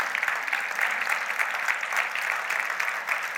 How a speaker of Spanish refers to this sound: ¿Cuántos pueden dar un aplauso al Señor por eso?